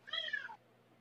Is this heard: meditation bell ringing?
no